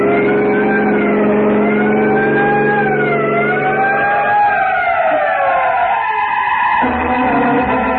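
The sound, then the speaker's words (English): A wailing siren sounded from a moving car to clear trucks ahead rises and falls over the loud rumble of the car's engine, continuous, its pitch sliding down as the vehicle drives on. “there's some trucks ahead, Peter. Sound your siren.”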